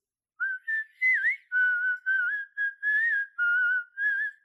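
Someone whistles a short, lilting melody, about nine clear notes in a bouncy rhythm with slight pitch slides, fairly loud, with no talking.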